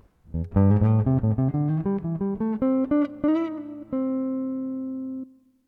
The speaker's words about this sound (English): I will improvise a short phrase using the C major pentatonic scale.